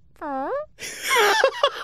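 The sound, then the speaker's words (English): Someone imitates a fart with their voice, starting with a short swooping hum, then a longer buzzy, sputtering raspberry that crackles out in bursts, fairly loud. “And fart sound.”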